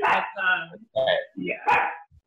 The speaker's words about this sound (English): This is real life with the dogs in the background. Sorry, my dog's barking. I'm like, stop barking.